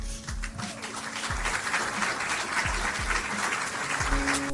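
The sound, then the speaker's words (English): Dense, sustained applause in a recording of Trump announcing a deal to end the government shutdown, a steady wash of many hands clapping at an even, loud level, with a low thudding pulse recurring roughly every second and a half underneath. “Listen to how silly the announcement sounds and the profuse applause after Trump says we've reached a deal.”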